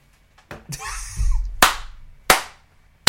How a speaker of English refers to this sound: Why are you clapping?